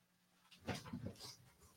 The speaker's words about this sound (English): There's a big white van slowly rolling by the house, but stopped long enough to set the dogs off. They started barking. It kept going.